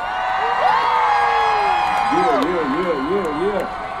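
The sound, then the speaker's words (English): A large crowd in Orlando cheers and applauds Nick Cannon loudly for several seconds, with overlapping whoops and high, wavering yells rising above a steady wash of clapping and shouting. “Okay, kids, give it up for Mr.”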